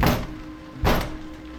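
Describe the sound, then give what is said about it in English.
Two heavy, booming thuds as someone pounds on a door from outside, spaced almost a second apart, with a low steady hum underneath and no voices. “I'm not gonna let them keep pounding away out there.”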